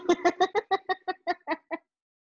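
A chicken clucks about ten times in a quick, steady series of short, fairly loud clucks that stop after under two seconds, followed by silence.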